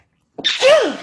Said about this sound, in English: I have like a sneeze coming. Oh my God, it's coming. Oh my God, it's coming. Is it here?